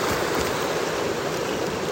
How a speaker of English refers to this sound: It's starting to rain. You'll probably hear the water getting louder.